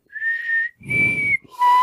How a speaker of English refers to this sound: You guys know how to whistle?